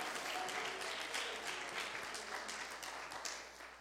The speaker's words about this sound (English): Somebody clap your hands and say, God, I love you.